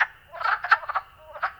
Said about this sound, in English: Wood frogs are perhaps one of the very first frogs to call at that time of year, right after the ice melts on the ponds, and you get that first 55-degree day in late February.